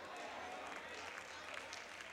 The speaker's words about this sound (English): Look how this hand clap's getting small now.